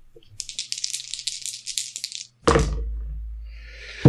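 A couple of seconds of quick, bright clattering of three six-sided dice (3d6) shaken and rolling ends in a sudden heavy thunk as they land on a table, followed by a low lingering rumble.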